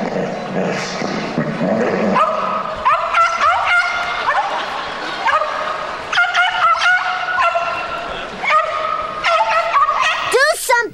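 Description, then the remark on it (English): A small chihuahua yips and barks in quick, high-pitched bursts, fairly loud, with brief pauses between volleys and a steady background hum throughout. “Your bark, it's starting to sound a lot like a little chihuahua.”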